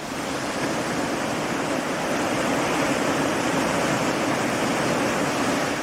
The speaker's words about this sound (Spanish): Más allá de los montes se llegaba a un hermoso río cuyo impetuoso curso me devolvió la memoria de la balsa en la que había embarcado en mi último viaje.